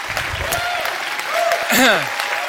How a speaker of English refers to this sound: Good to see you this morning. Yeah, it's good to see you. I'm clapping for you. It's good. Oh, you don't need to do that. Thank you.